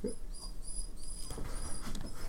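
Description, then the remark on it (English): A dog whimpers softly in thin, high-pitched whines that stretch across the moment, fairly quiet, with no one talking over it. “And he wants more attention.”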